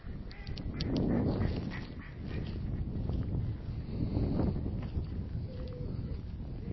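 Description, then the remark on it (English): Several ducks quack and chatter in a steady, noisy cluster as they try to make their way in a puddle because their duck pond has dried up, with water splashing and a low rumbling, windy background throughout. “And the answer to my question yesterday about ducks is that they are actually still here, except that now they're trying to make their way in a puddle rather than in a duck pond, which is fabulously dry, as I said it was a couple of recordings ago.”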